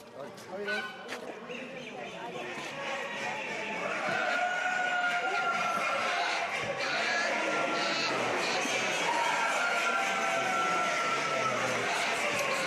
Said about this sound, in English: As we make our way into the massive show hall, nothing can prepare you for the collective sound of ducks, turkeys, geese, and chickens, all talking away to each other.